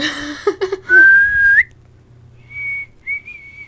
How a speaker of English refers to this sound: I can't whistle.